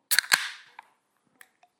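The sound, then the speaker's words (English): A can or bottle cracks open: a quick pair of sharp metallic snaps, then a fizzing hiss that fades within half a second, followed by a couple of faint clicks. “All right, so here we go. Let's crack it.”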